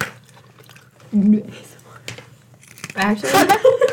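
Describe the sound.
Crisp, crackly crunching of a Whoppers chocolate malted milk ball being chewed, coming in two bursts of brittle snaps, with low murmuring voice sounds mixed in.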